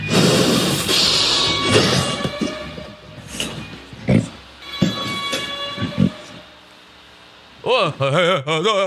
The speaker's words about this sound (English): And this is real, by the way. He's got the whipped cream canister right here. He's, he's really breathing all this junk in, and this is 100% the real deal.